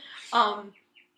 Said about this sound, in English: The hell was that? What the hell's that going on? That was a bird. This is one of those rare, it's like window 70, open days.